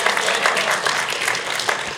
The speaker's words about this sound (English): Yeah, clap for him.